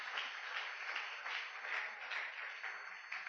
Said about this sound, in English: Clap your two hands if you believe it.